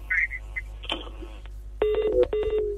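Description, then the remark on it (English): Telephone dialing tones on a call-in line: a few steady electronic beeps follow brief chirpy tones, fairly loud, with no one talking. “I'm calling. I'm calling. I'm calling.”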